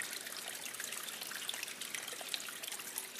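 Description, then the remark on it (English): Drinkable water trickles steadily off rocks in a cave, a soft continuous hiss flecked with tiny splashes and drips, fairly quiet and unbroken, with no voices. “So they found a spot that was not flooded, but had drinkable water coming off the rocks.”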